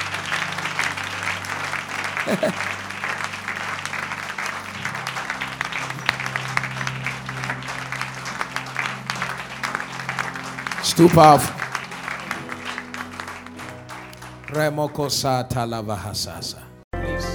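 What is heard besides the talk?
audience clapping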